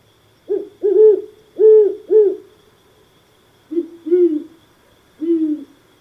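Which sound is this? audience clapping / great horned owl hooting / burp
great horned owl hooting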